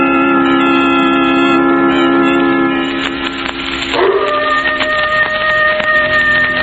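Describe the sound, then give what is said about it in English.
A coyote howls off in the hills near a sleeping village: long, steady high wails layered in harmonics, with a sliding bend in pitch midway before the cry settles into a higher held note. No one speaks. “Not a sound anywhere, Lamont, except that coyote off in the hills.”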